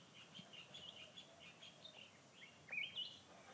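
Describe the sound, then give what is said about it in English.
Birds chirp steadily in a quick series of high, thin tweets, with a couple of brighter, louder calls near the end over a soft background hum. “The voices of animals and insects, birds.”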